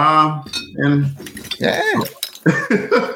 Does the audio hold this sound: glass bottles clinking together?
yes